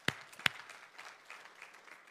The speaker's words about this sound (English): Right here in our community, 20-plus families will get Christmas because of you, and I'm thankful for you, and you deserve a round of applause, so let's hear that.